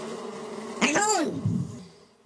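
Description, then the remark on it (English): A person makes a short buzzing noise with their voice, imitating a swarm of bees. The buzz swells and bends in pitch for about a second, then fades into quieter background noise. “All right, and he just stormed out of here, or he/He's, millions of bees stormed out of here.”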